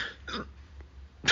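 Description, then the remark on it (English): A few short, throaty burps from a man who has just sat up, the last one louder and more abrupt, with quiet pauses in between and no talking. “So I may cut this one short because I sat up and I'm just burping.”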